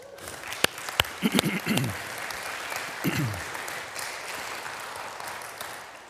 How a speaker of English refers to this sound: Can we just get an applause for God?